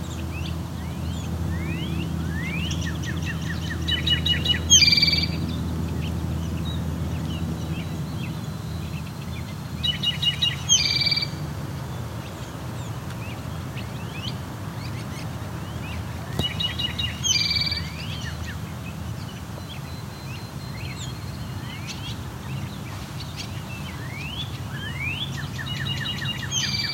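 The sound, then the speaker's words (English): Two northern cardinals sing in repeated series of clear, downslurred whistles, with a few sharp bursts in between, all over a steady low rumble. “We're also hearing two northern cardinals.”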